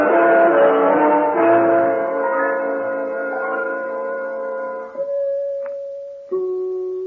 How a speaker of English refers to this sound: Did you not hear those beautiful chimes?